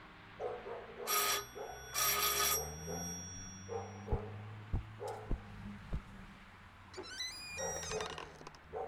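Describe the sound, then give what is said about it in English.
At night, police officers ring a doorbell at a house in Southland City: it rings twice in bright, buzzing bursts, followed by four dull, evenly spaced knocks and a short run of chiming tones at the end. No one speaks. “From the way he looked, he'd been in bed when we rang the bell.”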